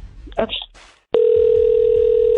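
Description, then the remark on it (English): After a brief burst of voice and rustling, a loud, steady telephone dial tone kicks in and holds unbroken to the end, a single continuous pitched hum of an outgoing call. “I'm going to call him right now, okay?”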